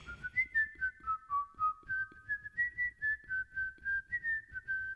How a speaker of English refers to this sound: It's time for Guess That Song, Whistling Edition. I'll whistle a song, and you guess what it is.